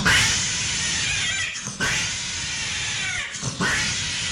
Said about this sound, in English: We've also played regular house cat mating on the show before in a video that lasts 6 seconds and is called Cat Wrong Hole.